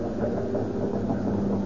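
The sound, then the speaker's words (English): A steady, droning engine hums continuously with a low rumbling tone, holding an even loudness throughout without any voices, like an airplane engine circling overhead. “That plane isn't going any place. It's circling over us.”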